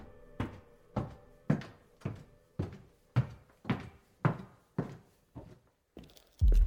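A steady run of a man's heavy footsteps slowly approaching, about a dozen dull thuds at an even pace, unchanging in loudness, ending with a sudden louder bump. No voices.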